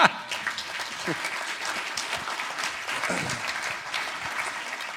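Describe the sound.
A room full of people applauds steadily, a dense wash of clapping that holds at an even level for several seconds, with faint voices mixed underneath.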